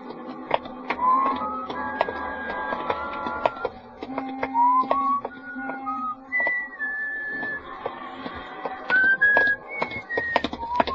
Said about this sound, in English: It was on my day off and sort of late at night. And I was just walking along the street, not going anywhere in particular or even thinking anything much. Just sort of whistling to myself and walking along the street.